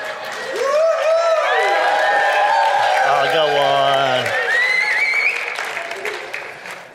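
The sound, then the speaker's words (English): A church audience cheers and applauds loudly for several seconds as the senior pastor comes up to give the message, with rising whoops and shouts over steady clapping that gradually tapers off; a man briefly speaks through the noise. “I just love to have you cheer for me, so.”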